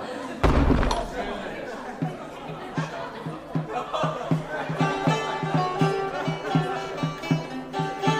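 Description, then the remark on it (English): A heavy hall door slams shut once near the start with a loud, booming thud, followed by a steady stream of voices echoing in the hall. “Let the door of hall be shut, nor any man nor woman enter.”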